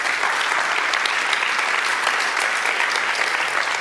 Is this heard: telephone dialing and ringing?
no